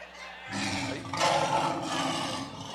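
A lion roars in a loud, rough, sustained growl that swells twice across the few seconds, with a deep rumbling undertone and no voices.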